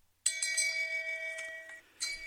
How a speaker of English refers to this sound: Okay, so the shame bell is cannot be picked up on this microphone right now. So there's that. You can kind of hear it.